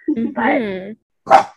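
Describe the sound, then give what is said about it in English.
A female dog barks twice at something: first a drawn-out, whining bark, then after a short pause a sharper single bark. No one talks over it. “Yeah, sorry, she's barking at something.”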